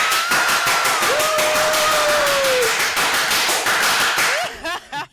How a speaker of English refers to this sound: I never said that. Was such an angry clap. You were not happy for me at all. That was the point. You weren't happy for me. That was so angry.